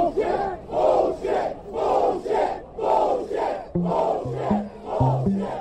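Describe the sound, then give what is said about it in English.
A large crowd cheers and chants in a steady, rhythmic pulse of loud shouted bursts, with low sustained horn-like tones joining partway through. “And again, the crowd was just cheering and cheering.”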